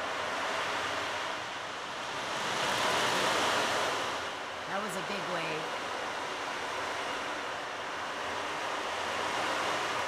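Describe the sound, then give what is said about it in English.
An ocean drum makes a steady, hissing rush of rolling beads that swells and fades like breaking surf, fairly loud, with a brief spoken phrase partway through. “It's an ocean drum.”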